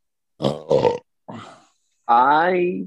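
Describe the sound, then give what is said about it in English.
Loud burping: two short throaty bursts, a brief softer croak, then a long, drawn-out belch that slides down in pitch. No talking around it. “Thanks for the burp, by the way, dickbag.”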